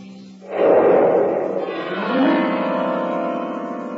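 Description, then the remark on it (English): A firecracker goes off inside a grand piano: a sudden muffled bang erupts, followed by a jangling, ringing wash of strings that slowly fades. “I once shot a firecracker off in a grand piano.”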